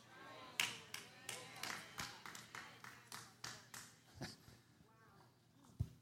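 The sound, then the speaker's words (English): One person, the speaker, claps for himself steadily, a string of sharp, fairly even claps at roughly three per second that tapers off near the end, with a faint voice murmuring underneath. “I clap for myself.”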